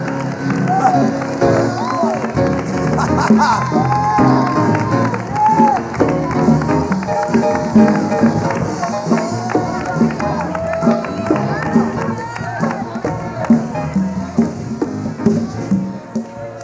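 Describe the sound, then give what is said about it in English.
A church audience clapping their hands to the Lord and cheering together in worship, a steady dense patter of many hands mixed with shouts and raised voices, loud and sustained throughout. “Clap your hands up to the Lord.”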